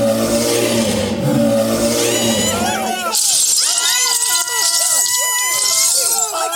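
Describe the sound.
A man over 7 feet tall in a bear costume imitates a bear's roar: a low, rough, sustained growl lasting a few seconds, then a crowd bursts into high-pitched screams, cheering and applause.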